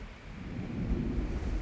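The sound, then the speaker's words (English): A faint, low, continuous rumble with a hollow, echoing quality, like thunder rolling steadily without distinct drips or breaks, the sound of a high-altitude glacier, far from civilization, slowly melting as its volume decreases. “And that faint echo is the glacier slowly melting.”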